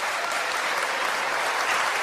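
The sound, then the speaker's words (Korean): A crowd at a Democratic Party event applauds steadily for party members watching online, many hands clapping in a dense, even wash of sound that holds at the same fairly loud level throughout, with no voices standing out. “박수 한번 보내주시기 바라겠습니다.”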